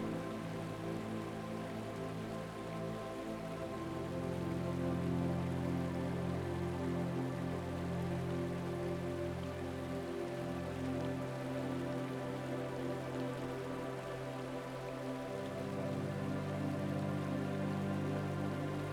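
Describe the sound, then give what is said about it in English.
A continuous, steady wash of flowing stream water, softly hissing and even throughout, layered over sustained low humming tones that shift slightly in pitch. No one speaks. “Maybe you can start to hear the movement and the flow of the water.”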